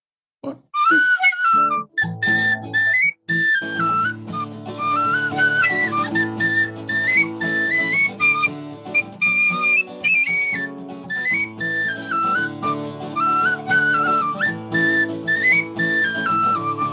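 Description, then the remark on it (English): A bright Irish tin whistle (flageolet) plays a lively, ornamented melody over steady accompaniment with low drone-like chords, loud, running continuously after a brief pause near the start. “One of the things that we do also is some music with an Irish whistle, a tin whistle, flageolet.”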